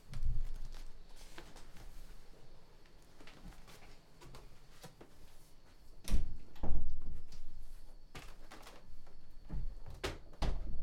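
door being shut

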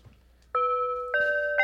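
bells ringing

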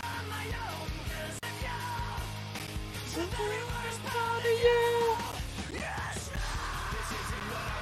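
screamed vocals

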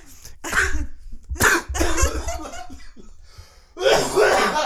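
human coughing

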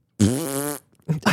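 fart sound

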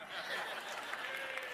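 audience cheering and applauding

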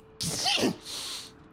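sneeze

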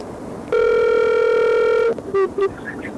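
telephone call dialing tones

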